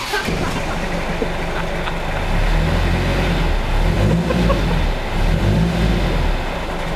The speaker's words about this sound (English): Rev the Triumph's engine!